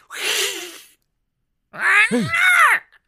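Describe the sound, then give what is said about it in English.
A person imitates an angry cat threatening a giraffe's face, loud: a breathy hiss lasting under a second, a short silence, then a strained, wavering yowl that rises and falls before cutting off. “I'm gonna do that whole thing where the cat like kinda takes a swipe, but like is just like threatening at the giraffe face and the hiss.”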